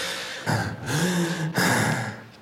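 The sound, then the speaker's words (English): A witness imitates a sick woman's labored, raspy breathing, drawing two or three harsh, wheezy breaths in a row, fairly loud, with a strained vocal edge on each inhale. “Can you demonstrate for the jury how David demonstrated to you his mother's breathing?”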